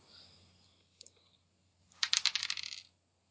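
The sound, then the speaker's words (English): Dice rolled for an attack in a game clatter onto a hard surface in a quick burst of sharp, bright clicks lasting under a second, after a couple of faint taps. No one speaks. “1, 2, 3, 4, 5, and then 2 more dice.”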